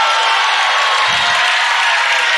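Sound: audience shouting and cheering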